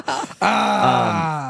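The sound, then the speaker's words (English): A person imitates the growl of their own dog: a brief voiced grunt, then a steady, loud, low growling moan that holds for about a second before tapering slightly. “Start growling. Like a dog.”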